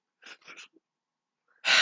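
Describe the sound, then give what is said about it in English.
Heavy breathing right up against a microphone: a couple of short, rough breaths, a pause, then a loud, rushing blast of air that cuts off abruptly. No one speaks. “Also, I'm really sorry about breathing.”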